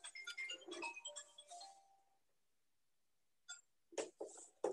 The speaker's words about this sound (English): That was my little timer.